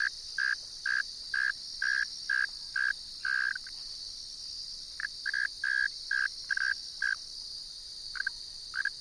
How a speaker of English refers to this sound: The male is singing from its burrow entrance. I'm thrilled to be in this cricket's presence, my appreciation no doubt amplified by having seen one of these amazing creatures years ago after it was forced from its burrow by a drenching rain.